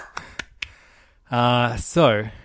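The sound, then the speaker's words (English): Three sharp hand claps in a quick, even rhythm, fairly crisp, from two people standing up in a standing ovation for the manga How Do We Relationship Volume 2, followed by a person starting to speak. “A standing ovation. We're both standing up, clapping our hands.”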